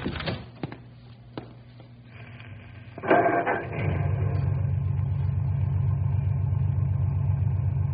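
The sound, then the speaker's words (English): A few mechanical clicks over a low hum, then a car engine cranks and catches around the midpoint, settling into a steady, rumbling idle that continues to the end. “Go ahead and start the car.”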